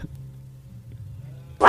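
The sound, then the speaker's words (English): A low, rumbling tiger growl sound effect holds steady for over a second, then bursts into a sudden, much louder snarl right at the end. No one speaks. “I want the tiger growl again.”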